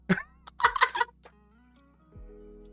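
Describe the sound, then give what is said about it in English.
A goose honks: one short nasal call, then a quick cluster of loud, raspy honks, followed by quiet lingering tones. No one speaks. “Or sorry, what the honk?”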